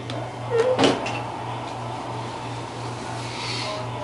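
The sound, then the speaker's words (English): A quick clatter and a solid clunk in quick succession as a man puts his glass into the kitchen dishwasher and its door shuts, followed by a steady low appliance hum with no talking. “brought his glass into the kitchen and put it in the dishwasher.”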